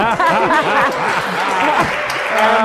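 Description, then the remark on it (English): Senators clap in a dense, steady burst of applause that lasts the whole moment, with several voices talking and chuckling over the clapping. “And they all draw them out with claps.”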